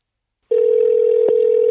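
After a short silence, a telephone line sound starts as a phone number is called: a loud, steady electronic tone that holds without a break, with one brief click partway through. No one speaks.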